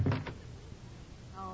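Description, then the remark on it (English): A door bangs shut with a short, heavy thump and rattle, then all falls quiet apart from a faint creak or murmur at the very end. “Who's that at the door, Junior?”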